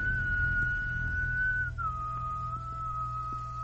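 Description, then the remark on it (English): Someone whistles a long, steady note that slides down to a slightly lower held pitch, clear, over a constant low rumbling background with no talking. “Now the whistle is better this time.”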